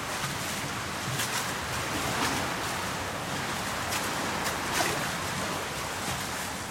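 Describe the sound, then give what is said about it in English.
Waves surge and wash in a big hollow space beneath the concrete quay of a harbour, among rusty concrete pillars, a steady broad rushing roar with a few swells rising briefly louder. No voices. “Basically underneath the concrete construction that makes up the quay of the harbour, there's a big hollow space.”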